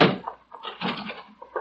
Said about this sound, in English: The door's giving way.